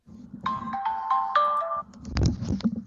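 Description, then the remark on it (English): A phone ringtone plays a bright, stepping electronic melody of repeated tonal notes for about a second and a half, followed by low rumbling and some clattering handling noise. “I'm getting a phone call.”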